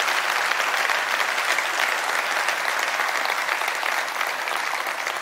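Steady, sustained applause from a large audience fills the space, a dense wash of clapping hands that stays loud and even throughout with no voices standing out.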